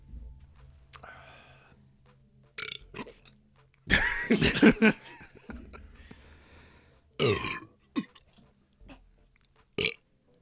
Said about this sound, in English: Okay, man, that was a juicy burp. It was.